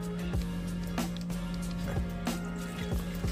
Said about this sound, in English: So, all right, we got our packet open. Dump that powder in there.